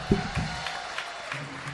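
An audience applauds a comedian with a steady, moderate wash of clapping, while brief voices rise from the crowd near the start and again toward the end.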